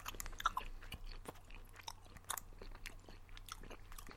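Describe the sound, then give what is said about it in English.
Wet chewing of a very small, greasy Slim Jim meat stick, with irregular smacking bites and mouth noises repeating over a few seconds, heard alone with a low steady hum beneath. “I gotta be honest with you, listening to you chew, that was like the most disgusting auditory experience I've had on this podcast.”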